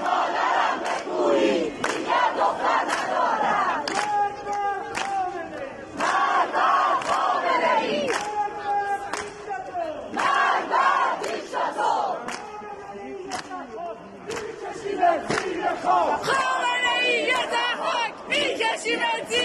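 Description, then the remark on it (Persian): A large crowd of protesters on Chaharbagh Street in Isfahan, Iran, on Thursday 28 Mehr chants and shouts together in loud, rhythmic bursts, many voices rising and falling in steady waves with sharp claps or bangs punctuating the noise throughout. “پنجشنبه 28 مهر اعتراضات مردم اصفهان خیابان چهارباغ.”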